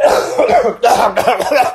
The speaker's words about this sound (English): Oh no, where's my mask? I'm coughing. I gotta save the viewers.